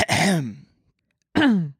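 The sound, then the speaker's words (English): A person clears their throat twice, each a short voiced, gravelly rasp sliding down in pitch, with a brief silent pause between them and no talking. “Let me clear my throat so I'm ready to...”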